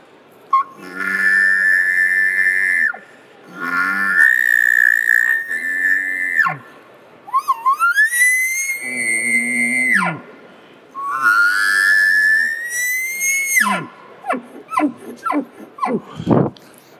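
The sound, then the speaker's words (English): Four elk bugles blown on a latex mouth reed with pursed, buzzing lips, each a loud, high, reedy whistle rising and sliding, with breathy grunts trailing off at the end. “As you purse your lips together, that buzz of that, when you introduce a latex behind or mouth reed, this is what that sounds like.”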